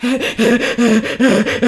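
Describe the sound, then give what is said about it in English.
A voice imitates loud, panicked gasping breaths, a rapid run of about five or six harsh, voiced inhalations in quick rhythm, intense. “Stop breathing.”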